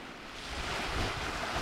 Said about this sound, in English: Waves lap languorously against the shore on Ometepe Island in the middle of Lake Nicaragua.